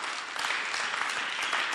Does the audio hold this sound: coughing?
no